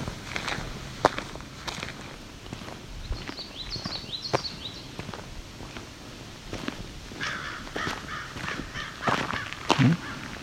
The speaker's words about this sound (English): Okay. Stirred up some crows. The hawk may be why.